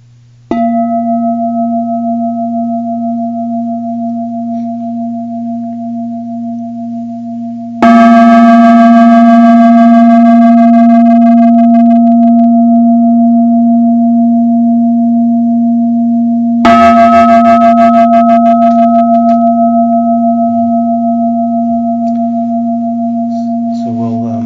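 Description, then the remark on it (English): A meditation bell is struck three times at slow, even intervals, each strike bright, its deep resonant tone humming on and overlapping the next. No one speaks. “and I'll kindly ask the bell ringer to maybe ring the bell at 5 after 9, so we'll have a little bit more balanced time between the walking and the sitting.”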